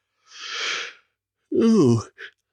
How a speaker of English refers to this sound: Excuse me. Oh, that's a yawn. I'm messing with this stupid computer. I should have been asleep an hour ago.